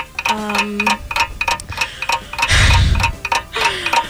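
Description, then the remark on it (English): A 30-second timer clock ticks in a steady, fast rhythm of sharp, bright clicks, about four per second, joined briefly by a low tone, a rumbling swell midway and a short sliding tone near the end. “I'm going to give you 30 seconds on the clock, and you will tell me.”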